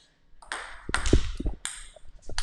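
A ball is served in a ping-pong game: several sharp, bright taps at uneven intervals, with a few low thumps between them. No one speaks.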